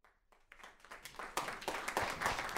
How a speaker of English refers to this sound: You can clap even though you don't know who he is.